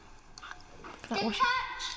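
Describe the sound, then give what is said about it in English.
Quiet wet chewing and squelching of children eating their lunch at the dinner table while doing Frank Spencer impressions, soft at first and then a denser, louder stretch of mouth noises in the second half, with faint voice-like tones mixed in. “They're eating their lunch. That's why they're chewing.”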